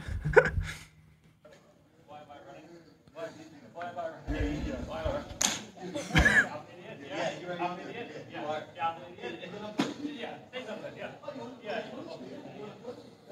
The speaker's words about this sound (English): And there's more to that, slap too. Slap the piss out of him.